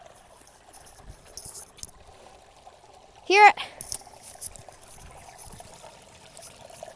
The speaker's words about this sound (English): That's the creek. Da or a creek. Whichever way you want to put it. I say the creek. You might say a creek. They both work. It's really the creek.